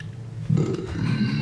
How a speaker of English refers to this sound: When we have like 50 episodes, we should just collect all the burps from all the episodes and put it in a track.